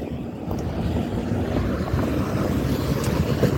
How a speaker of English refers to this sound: The sun is where it should be. And yes, hear that train coming? So that's another way I know I'm on the right road right now.